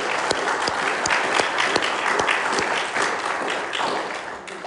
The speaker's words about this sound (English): That was really wonderful. We can clap again.